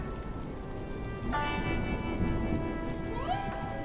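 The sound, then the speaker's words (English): Steady rain pours down in a dense, continuous hiss that grows louder after the first second, with a deep low rumble and faint sustained tones running beneath it. “I've been begging God for the rain to stop, for forgiveness and clarity.”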